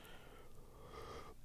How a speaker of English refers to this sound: I'm tired. Sorry. I just yawn. It's the middle of the day.